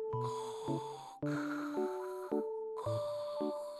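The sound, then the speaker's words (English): A voice imitates Darth Vader's heavy mechanical mask breathing: three long, loud, hissing breaths in steady succession, with sustained tones running through them. “I do a pretty mean Darth Vader.”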